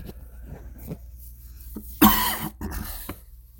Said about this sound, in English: That is not a corona cough.